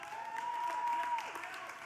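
An audience claps steadily and continuously, a dense crackle of many hands that stays at an even, moderate loudness throughout. A thin, sustained whistle-like tone rides over the first half.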